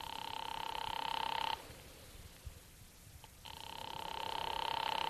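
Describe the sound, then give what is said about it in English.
A telephone ringing over the line as an operator rings Charlie Briscoe's number, 136: two long bursts of a steady, buzzy ring tone separated by a silent pause of about two seconds, with no one talking and no answer. “I'm ringing.”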